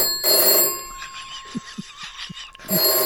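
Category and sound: household object, telephone bell ringing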